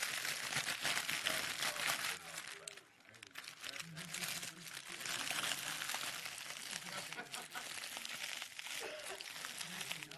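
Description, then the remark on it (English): Loud, continuous crinkling and crunching of about three plastic chip bags being crushed, pressed down and shaken together to make room, with bursts of crackling that keep going almost without pause, and a voice speaking briefly over the noise. “Who wants some smashed up chips?”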